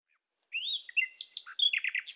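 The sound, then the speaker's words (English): A nightingale sings a rapid, varied phrase: a rising whistle followed by quick, bright chirps and trills, clear against a silent background with no voices. “It was a special conversation, and one filled with song, from both Sam and the Nightingales.”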